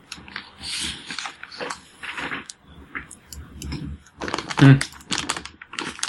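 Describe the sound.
Rapid, clattering computer keyboard typing, loud, with bursts of keystrokes and brief pauses, plus a heavier thump near the end; a voice murmurs faintly in the background.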